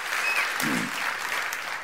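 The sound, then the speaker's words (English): A crowd claps together in steady, dense applause for the Lord, a broad wash of many hands that holds at an even level throughout without any voices standing out. “Give the Lord a great hand clap for that.”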